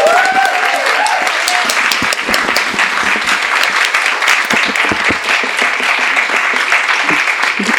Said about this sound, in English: Let's please give her a warm round of applause.